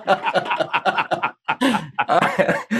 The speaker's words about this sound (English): It's just a long coughing fit in the middle of the podcast.